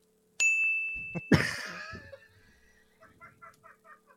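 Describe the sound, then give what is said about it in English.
A bright bell rings out with a sustained chime, followed by a noisy jangling burst and a run of lighter, rhythmic jingles that fade out. No voices are heard. “Who says you need jingle bells only on Christmas”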